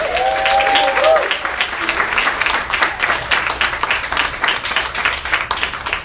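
An audience applauds steadily for several seconds as a guest is brought up, a dense wash of many hands clapping. A brief sustained cheer or whoop rises over it at the very start, then the clapping continues evenly.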